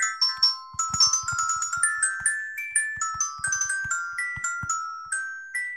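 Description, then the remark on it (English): A chiming bell jingle plays softly, a steady run of bright, bell-like notes forming a simple melody, each struck tone ringing briefly before fading. No voices are heard. “That's the bell. It's just playing softly in the background.”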